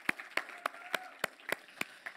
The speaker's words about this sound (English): So can we just honor our MC leaders by giving them a big round of applause? I think that would be fantastic. Woo!